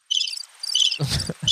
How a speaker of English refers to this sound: It's the crickets. That sounds like somebody like streaking that window washing. It's a preloaded thing. Sound effect on my mixer. It says crickets, but it's not a very good crickets, right? That's not a cricket.